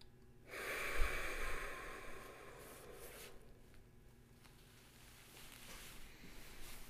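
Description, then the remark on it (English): A deep breath is forced out in one long, noisy exhale during a breathing exercise meant to release what is held in the chest, a broad airy rush lasting a couple of seconds before fading into quiet breathing. No one speaks. “And as you do that breath, we're going to do one more.”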